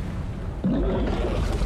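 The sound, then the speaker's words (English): In a film scene, Kong throws up a huge wave of water: a sudden heavy surge of water, like a huge splash, bursts out of a steady low rumble and keeps roaring as a broad, loud wash of churning water with no voices. “He just like threw up a whole tidal wave of water, though.”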